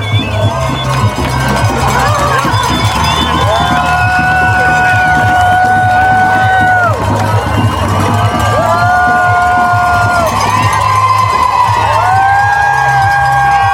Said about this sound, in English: Cheering on our representatives. There are people from every single state here, tri-state area.